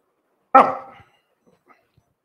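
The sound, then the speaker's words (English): A single sharp, loud dog bark with a harmonic, slightly drawn-out tail that fades within half a second, followed by near silence and a couple of faint ticks. “It will immediately turn back and bark.”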